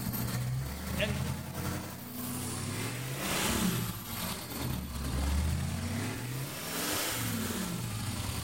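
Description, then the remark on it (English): A 140-horsepower boat engine with a wet exhaust runs steadily, its low, mellow, burbling rumble rising and falling in pitch as the throttle shifts, while people talk over it. “That's a wet exhaust as opposed to a lot of the race boats have dry exhausts and they're like a car.”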